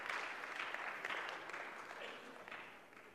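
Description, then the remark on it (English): An audience applauds a man for responding to a fire drill: a dense, steady patter of many hands clapping together that holds for a few seconds before tapering off slightly toward the end. “and everybody give him a hand for responding to that fire drill.”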